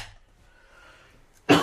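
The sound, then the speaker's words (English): A single sharp, loud cough bursts out right at the end, after a stretch of near silence with only faint breathy background. “I'm coughing less this week, but I'm still.”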